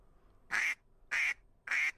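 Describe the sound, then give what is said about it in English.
Three loud, nasal duck-call quacks in a steady, evenly spaced rhythm, each short and bright, with quiet gaps between them and no talking. “Here's a duck call.”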